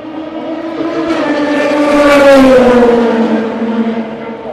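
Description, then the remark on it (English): The No. 67 Ford race car's engine swells to a loud peak and fades away as it passes by, its harmonic whine rising then dropping in pitch over a few seconds. “And the 67 Ford goes by.”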